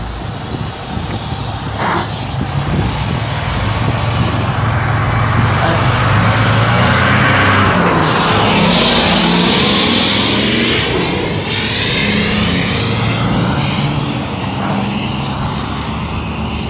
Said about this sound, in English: Oh shit, a truck.